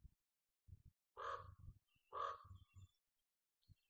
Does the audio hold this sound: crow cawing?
yes